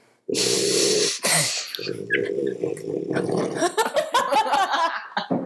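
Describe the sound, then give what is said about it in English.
A pet named Daisy snorts loudly, starting with a long, rough snort and then a quick second one, before breaking into a run of shorter, irregular snuffles and wheezy snorts. “Daisy is back, in case you hear her. Daisy. All right. Snort, snort.”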